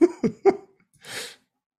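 A sneeze: three quick, voiced catching breaths in a row, then a pause and one hissing, breathy burst. No one speaks around it.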